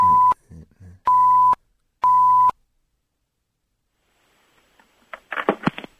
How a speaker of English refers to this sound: We'll beep that.